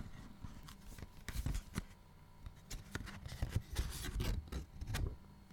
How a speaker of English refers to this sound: That was me just ripping out the little paper that's included in every package, and as I unfurl it and put it in front of my microphone, here is what it says.